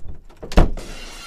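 A sharp, loud crash like shattering glass, with a bright, hissy wash of noise trailing after the impact, as at the start of a wrestling entrance theme. No one speaks.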